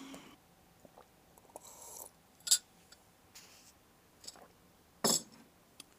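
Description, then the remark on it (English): Someone gulps tea quietly, with soft mouth and swallowing noises, a couple of sharper clinks like a cup touching something, and faint handling sounds. No one speaks. “Ooh, child, that was more like a gulp of tea.”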